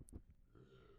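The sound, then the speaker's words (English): A single burp: a brief low, throaty burst followed by a drawn-out rumbling tone, fairly faint, with no talking. “I just burped really loud.”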